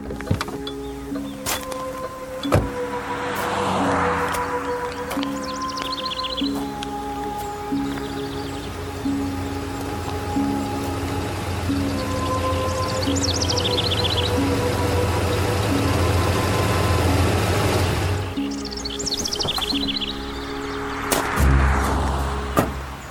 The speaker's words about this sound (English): There'll be a tow truck anytime now. You'll see.